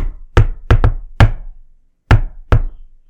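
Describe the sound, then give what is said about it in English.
Knuckles rap out the classic "shave and a haircut" knock sequence during a paranormal investigation: a quick run of solid thumps, a short pause, then two final knocks. Loud and wooden, with no voices. “Like, the name of that knock sequence is called a shaving a haircut.”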